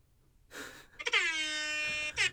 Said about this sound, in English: Hey, the foghorn, dude. We actually inserted that into the pod. Yeah. With our tech.